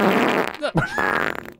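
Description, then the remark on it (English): A loud, sputtering fart with a crackly, staticky texture like a Geiger counter, rising into a squeaky high-pitched tone before fading in rapid little pops. “You know, it kind of sounds like when they have like the radiation detectors. You know what I mean? Like that kind of staticky. Geiger counter.”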